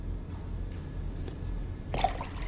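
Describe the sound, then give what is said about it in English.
Near-silence with a faint hiss gives way, in the final moments, to a brief, splashy rush of water being poured into a glass, moderately loud. “Could these same water molecules ever be returned to this glass just as they were before, no more, no less, in precisely the same configuration?”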